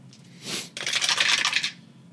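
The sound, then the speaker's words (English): A handful of dice clatter onto a hard table, a short rattle first, then a longer dense burst of tumbling clicks that settles after about a second, rolled for attack damage in a tabletop role-playing game. Fairly loud, with no talking. “That was too many dice.”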